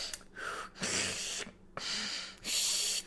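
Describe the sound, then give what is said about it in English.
A voice imitates drinking: breathy inhales and exhales alternating with short gulping clicks, repeating in a steady rhythm about four times with brief pauses between. “She began to find a routine of breathing and swallowing, like a six-year-old does, just...”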